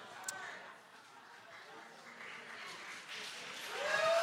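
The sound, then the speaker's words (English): An audience applauds, a steady wash of many hands clapping with a few voices mixed in, swelling slightly louder toward the end with a brief whoop or whistle. “I don't know why we're applauding.”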